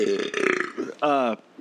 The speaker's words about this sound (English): I covered my mouth like it mattered. I burped out loud.